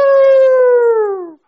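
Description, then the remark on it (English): One long howl from a human voice mimicking a wolf or coyote, a sustained tone that glides slowly downward and then stops abruptly. It is loud, with no other sounds. “They heard some wolves or coyotes.”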